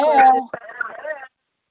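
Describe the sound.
A brief burst of thin, tinny voice over a phone line, with a hollow, echoing quality, lasting about a second before dropping into silence.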